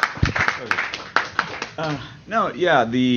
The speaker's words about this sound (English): A round of applause.